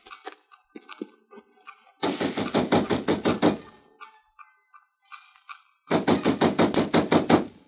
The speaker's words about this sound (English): we'll knock at the side door of Tai Shar Shung's house